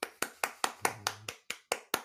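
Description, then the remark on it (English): A single person claps about nine times at a quick, steady pace, each clap sharp, with a brief low hum in the middle and no one speaking. “If you heard, that's me clapping because this is one of my favorite times of the year.”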